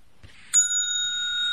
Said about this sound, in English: Let's see if you, let's practice ringing the bell.